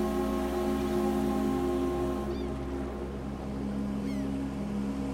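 A deep, sustained ferry whistle drones steadily over the rumble of a ferry pulling away from a wharf, with a couple of faint gull-like cries.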